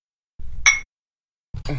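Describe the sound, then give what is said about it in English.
Beer glasses of double IPA clink together in a toast, one bright ringing chime, followed shortly by a second, duller knock of glass with some handling noise and no talking. “All right, cheers.”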